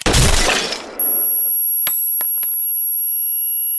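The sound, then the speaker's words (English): A single loud, sharp gunshot fired indoors at a wall booms and decays through an echo, then gives way to a steady high-pitched ringing tone with a few faint clicks underneath. “She fired a round at the wall behind him and winced.”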